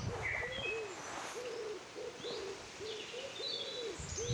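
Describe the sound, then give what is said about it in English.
A pigeon coos repeatedly in soft, rolling bursts, while faint chirps from other birds flicker in the background. “We have a maverick pigeon.”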